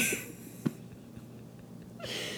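A single quick, muffled sneeze bursts out after a breathy hiss, followed by quiet and then another soft rush of breath. No one speaks.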